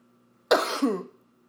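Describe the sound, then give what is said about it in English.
A woman's single sharp sneeze bursts out of near silence: a harsh, breathy blast followed by a second voiced push, lasting about half a second before fading away over a faint steady hum. “What, she got a sneeze.”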